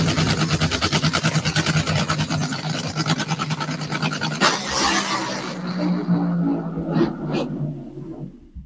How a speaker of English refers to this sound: Top Fuel rails, Top Fuel funny cars, they are so loud that even you can hear the loudness when they're just sitting on the starting line. But once they take off, it even blows the speakers from your phone away